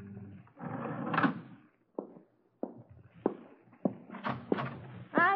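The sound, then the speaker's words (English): A door scrapes and clunks open, followed by a series of evenly spaced footsteps thudding along a hard hallway floor, moderately loud, with a brief voice-like sound at the end. “I heard your footsteps in the hall. I opened my door and let out a call.”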